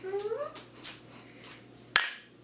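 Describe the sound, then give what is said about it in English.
A rising vocal whoop, then a single bright clink of beer glasses, holding a light-colored cherry-flavored fruit beer, meeting in a toast, its high ringing tone lingering and fading over the final half second. “Talk about a good clink.”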